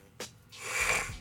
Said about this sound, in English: Allergies been fucking up all day. Sniffling all in the mic.